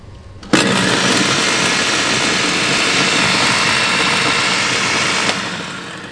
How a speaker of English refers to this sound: And let's say we wanna make some blended drinks. So you turn the blender on